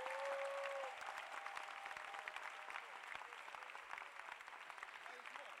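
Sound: audience clapping hands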